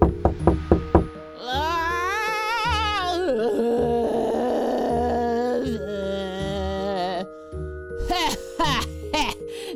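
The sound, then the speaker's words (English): A quick series of about five sharp, loud knocks from a human-skull door knocker on Judge Gladys Ghouly's door opens the scene, then gives way to sustained warbling tones and voices that carry through the rest. “Is that a human skull as her door knocker?”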